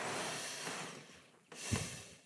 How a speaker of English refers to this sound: We were just out for a long walk in the woods, a little bit of snow. Very nice. Now we're back. She's snoring away. So if she snores, you can know that we got a peaceful dog in the car.